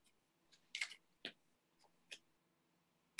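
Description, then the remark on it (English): Tarot cards being shuffled for a reading, giving a handful of soft, crisp papery snaps and clicks at an irregular pace, fairly quiet, with no one talking. “Okay, I'm gonna shuffle and just tell me when to stop.”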